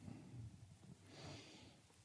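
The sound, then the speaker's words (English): A single muffled sneeze, short and fairly quiet, over a low background rumble, with no talking around it. “Oh, and a sneeze, huh?”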